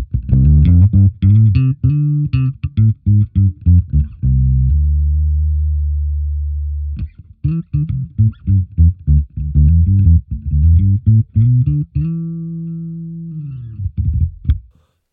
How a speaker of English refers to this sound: And that's going into the Aguilar 51 and the Ampeg 8x10, so kind of like a tone hammer through an Ampeg SVT fridge. So that's what it sounds like clean.